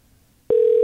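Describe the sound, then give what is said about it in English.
A telephone ring tone cuts in abruptly after a moment of near silence, a steady, loud electronic tone that holds unbroken to the end. No one speaks. “But my phone is actually ringing over here.”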